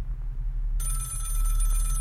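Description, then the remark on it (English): A telephone starts ringing partway through, a bright, rapidly trilling bell tone that continues to the end, fairly loud over a steady low hum. “You know, that phone hasn't rung once the whole time the show has been off the air.”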